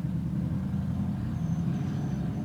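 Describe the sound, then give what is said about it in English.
A motorcycle engine in a parking lot rumbles steadily as the rider parks and turns around, a low, even drone that holds at a constant level throughout, with a faint higher whine briefly rising above it and no voices. “The motorcycle guy's fucking back.”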